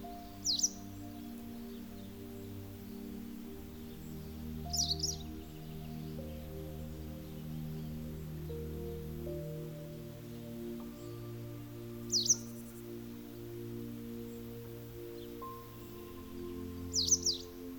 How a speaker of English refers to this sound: You notice sound of nature all around you. The birds are chirping away.